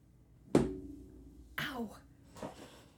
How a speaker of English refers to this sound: It was great until your mother just banged herself into the desk.